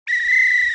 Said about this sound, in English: The way it works is you get sent a loose bag of whistles in the mail, and then you can make sounds like this.